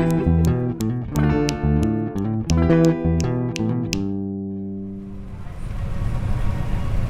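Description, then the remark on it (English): Melodic recorded music with crisp, struck notes plays loudly for a few seconds, settles into a held chord, then gives way to a steady bus engine rumble and road noise; the bus driver plays the record on the 12 o'clock bus service from Panajachel near Lake Atitlan to Guatemala City, Guatemala. “Got a particularly emotional record playing by the bus driver here on the 12 o'clock service from Panajachel near Lake Atitlan back to the capital city, Guatemala.”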